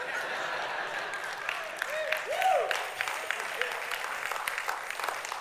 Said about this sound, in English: Yeah, that's a good clap. Thank you.